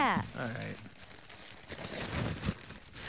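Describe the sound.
Gift wrapping paper rustles and tears open as a present, a Kirby hat, is unwrapped, in a steady, crinkly wash of noise lasting a few seconds, with a brief voice at the start.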